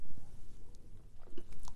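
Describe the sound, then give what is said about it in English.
A quiet sip of coffee: soft wet mouth clicks and a brief slurp, then a swallow, with no talking. “Like, I could say, I promise I'm going to take a sip of coffee, right?”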